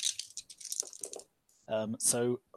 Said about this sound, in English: So I can shift 2 exalted icons. So that means you're rolling 2 extra dice with the extra damage dice on the melter gun.